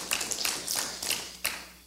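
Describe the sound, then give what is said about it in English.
Light, scattered applause: a handful of soft, irregular claps with brief bursts and gaps, fairly quiet, with no voices. The audience applauds itself at the speaker's invitation. “So I'm really, you can give yourself a round of applause for that.”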